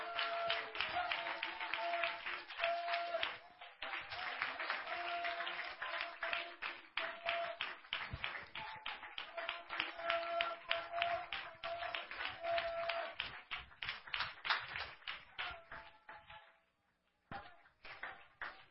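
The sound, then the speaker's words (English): A crowd standing to its feet claps hands in praise to the Lord, a steady rapid patter of many hands, with voices underneath. The clapping continues for most of the time, then breaks off near the end. “I wonder if we could stand to our feet and begin to clap our hands and give praise to the Lord, for he is worthy.”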